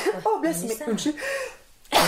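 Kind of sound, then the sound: human body sound, sneeze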